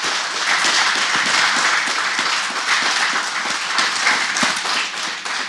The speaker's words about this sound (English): But if you can give a round of applause for these fantastic people.